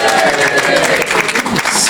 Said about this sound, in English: Slightly louder applause for Sarah.